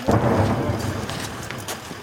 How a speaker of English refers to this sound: Basically, there's a fairly constant thud of incoming and outgoing artillery and rocket fire here.